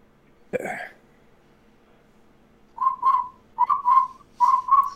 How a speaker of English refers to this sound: Cricket sounds, which makes no sense, because there are no crickets on Nessus.